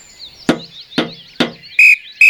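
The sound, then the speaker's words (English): Three sharp, evenly spaced taps ring out, followed by a quick, shrill whistle toot that sounds in two short bursts, given to wake a sleeping man, with faint high chirping in the background. “Three taps and a quick toot on a whistle.”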